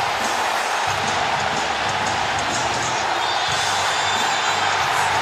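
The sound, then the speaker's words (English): A packed wrestling arena crowd cheers for a wrestler's entrance, growing louder as he walks onto the stage: a dense, steady roar of voices that stays loud and continuous for the whole stretch, with no one speaking clearly over it. The crowd noise is real, not pumped in. “and to hear just that, first pop, and then how much louder they get when he walks onto the stage.”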